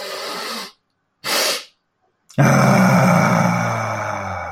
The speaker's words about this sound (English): And it's about 60% in through the nose, then about another 10% as a sniff, and then we do a big long ah. So if I just demonstrate it, it sounds and looks like this.